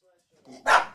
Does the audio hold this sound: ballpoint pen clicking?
no